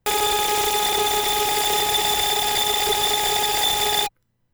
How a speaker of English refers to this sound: running three channels through some distortion to make an uncomfortably pitched oscillating drone